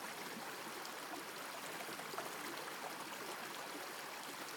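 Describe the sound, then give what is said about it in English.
A gentle stream flows steadily over rocks, a soft continuous babbling and trickling with no voices, its level even and unbroken throughout. “Watch the water as it gently flows over the rocks.”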